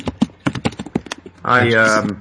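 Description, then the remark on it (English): Quick, uneven clacking of keys on a computer keyboard, fairly crisp, runs for over a second before a person starts talking and the typing stops. “That would be typing.”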